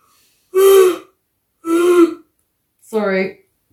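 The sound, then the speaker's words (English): A person yawns aloud, making three separate voiced, drawn-out groans in a row with short pauses between, the last one rising and wavering in pitch. “I'm gonna yawn.”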